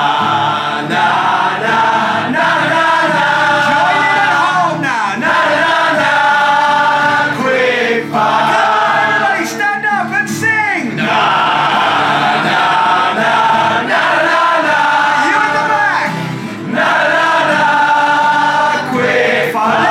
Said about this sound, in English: I mean, just imagine if everyone in the room started joining in and just kept singing. Na na na, quick fire. Let's hear at the back, everybody sing.